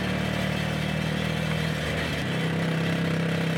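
A small tuk tuk engine drones steadily with a buzzing, motorcycle-like tone, straining at a constant pitch that drops slightly partway through, as the tuk tuk labours in third gear up a steep road snaking up a mountain through moorland, with no talking.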